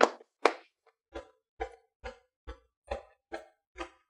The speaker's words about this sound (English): So now you're going to put your hands along the crease, and I'm going to give you a warning now. Be careful where you slap here. So you're going to learn quick if you're in the wrong spot. I want you to slap the crease about 10 times.